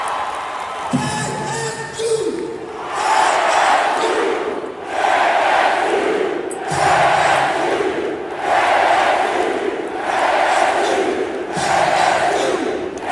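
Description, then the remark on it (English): A loud crowd on a basketball court roars and cheers as Jerome Tang stands on the scorer's table with a mic and players climb up around him, the noise swelling in steady rhythmic waves every second or two like a chant, with scattered shouts early on. “Crowd is crazy on the court.”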